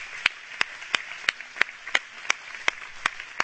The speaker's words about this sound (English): And so I would like to just give a round of applause to God for their sweetness.